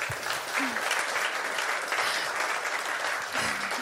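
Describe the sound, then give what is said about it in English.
A church audience claps steadily for its lawn team, who cut the grass all summer, a dense wash of many hands that stays fairly even in loudness throughout, with a few brief low voice sounds beneath it. “And just round of applause for our lawn team, if you don't mind.”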